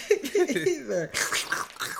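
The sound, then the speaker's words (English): A voice mimics slurping noodles: wet, gurgling vocal sounds sliding in pitch, then a loud, hissing suck of air, unaccompanied, lasting a couple of seconds. “Let me give him a couple of slurps right here.”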